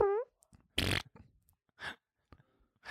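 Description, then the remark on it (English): A short squeaky rising tone opens, followed by several spaced, raspy fart noises, each a brief sputtering burst with quiet gaps between and no talking. “farting on the person behind you is going to be so funny.”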